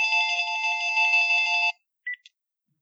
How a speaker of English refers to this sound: Oh, well, just call it. It shows that it's dialing him. I hear ringing on the other end.